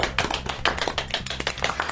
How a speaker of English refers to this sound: And no doubt all of you guys as well, in a small ripple of applause for the new Formula One world champion Britain's Lewis Hamilton.